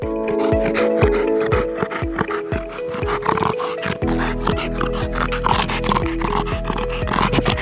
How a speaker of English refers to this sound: And as you can hear, Coco has been recently making this snorting sound, which startled everyone in the family. So, we took him to the vet's clinic and later found out that the sound that he's making is due to his flabby, soft palate.